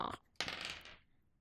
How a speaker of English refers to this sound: This dice doesn't work either. What is it? I rolled a 2.